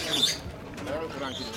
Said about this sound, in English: We begin at our hotel on the peaceful banks of the Niger River with the sound of cackling birds.